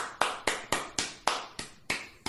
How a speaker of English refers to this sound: It's a golf clap for me, sir.